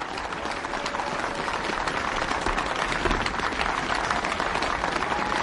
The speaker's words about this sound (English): The audience rises to its feet to applaud the new president.